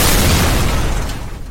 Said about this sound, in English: Monkey juice explosion.